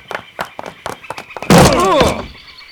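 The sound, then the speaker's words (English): A heavy table is rammed by several men against a wooden door to escape a room: several quick, dull thuds, then a loud splintering crash as the door is knocked off its hinges, lingering for a moment, with a voice shouting through it. “The table, over there. Let's ram it against the door.”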